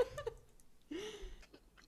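Someone chewing food, with soft, wet, irregular mouth sounds and crunchy clicks in a few short bursts. Fairly quiet, with no talking.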